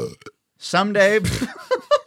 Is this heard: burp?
yes